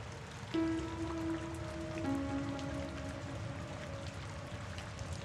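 Steady rain patters throughout at an even hiss, while a low sustained tone begins under it after half a second and holds, shifting pitch slightly. Nobody speaks.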